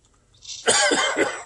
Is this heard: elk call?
no